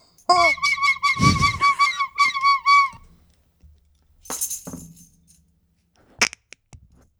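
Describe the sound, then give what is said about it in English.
A squeezed rubber chicken lets out one loud, drawn-out, wavering squawk lasting a few seconds, followed by quieter handling rustles and a couple of sharp clicks. “This chicken's like a grenade. Once you squeeze it, you get there's almost no way to defuse it.”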